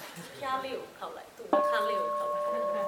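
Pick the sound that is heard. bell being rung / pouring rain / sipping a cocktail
bell being rung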